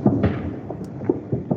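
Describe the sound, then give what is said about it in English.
Several muffled New Year's fireworks booms and thuds pop off irregularly, dull and low, heard from indoors through a window, with no one speaking. “Do you hear all the fireworks?”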